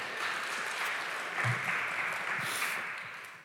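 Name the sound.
round of applause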